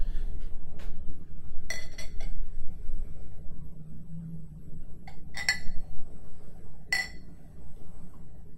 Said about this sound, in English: Most exciting part of the podcast for listeners. Exactly. The pour. The hearing of glass and bottle clank together.